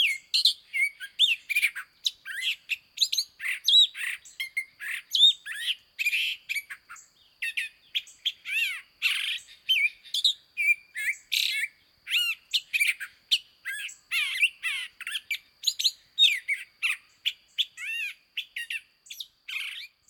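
A male long-billed thrasher, a Mexican species of the mimic thrush family, sings a continuous, richly varied song of quick whistled and chattering phrases, many repeated, high-pitched and fairly loud, with no voices or other sounds.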